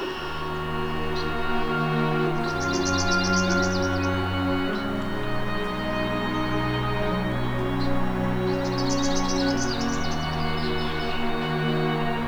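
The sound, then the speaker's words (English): A palm warbler sings two lazy, buzzy trills, each about two seconds long and high-pitched, separated by a pause, over a steady background of sustained musical tones. “Their song is a lazy, buzzy trill that can sometimes get confused for the song of the chipping sparrow.”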